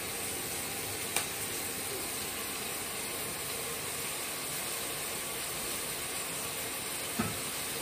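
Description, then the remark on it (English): Freshly cut onions sizzling in a frying pan: a steady, even crackling hiss that holds throughout, broken by a couple of sharp little pops, with no talking. “Turn this down a little and get my onions from over here. You know, the ones I cut not too long ago. And yeah, put them in.”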